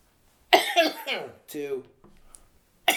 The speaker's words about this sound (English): So, I guess, oh man, once again, sorry for the coughing.